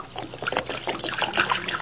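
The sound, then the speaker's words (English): Liquid floor wax (Johnson self-polishing glow coat) glugs and splashes as it is poured out onto a hard floor, a steady trickle with small sloshing bursts over a couple of seconds. “You just pour it out, do you? Yeah, like this, see?”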